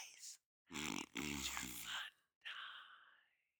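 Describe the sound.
A voice imitates snoring: a short breath, then a long rattling, throaty inhale that buzzes and pulses, followed by a breathy, fading exhale. The imitation is loud.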